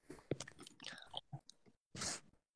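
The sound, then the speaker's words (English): Chewing on steak, with irregular wet smacks and crunchy bites at an uneven rhythm, followed by a brief louder breathy hiss near the end. No one speaks. “what were you eating? Steak.”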